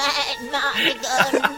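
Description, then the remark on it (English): A person imitates a goat's bleat, as a goat in a film bleats whenever it talks: a loud, quavering 'baa' that wobbles in pitch and stretches over a second or so with a few shaky pulses. “Like when it's the goat, it like is baaing every time it's like talking.”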